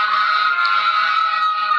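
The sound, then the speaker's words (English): Sirens of several ambulances passing one after another blare on one steady, loud, high-pitched tone with a buzzy edge, holding nearly constant throughout with no voices over it. “I was just going to let the ambulance pass.”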